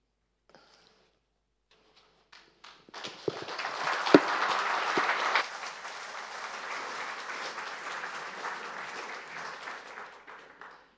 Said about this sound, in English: And I know it was never the custom once upon a time to clap at a funeral, but feel free. I think there are times when you'll want to do something like that.